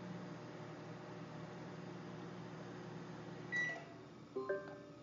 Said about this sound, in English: So the command is stop microwave, not cancel microwave. And it stopped it midway through.